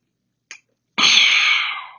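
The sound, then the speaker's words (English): A short faint click, then a loud, harsh, phlegmy throat-clearing cough that rasps for nearly a second before trailing off, with no talking. “Ooh, there was a little phlegm in that.”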